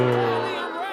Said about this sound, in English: Boo him, bro. Come Why on. You booing me? I'm right.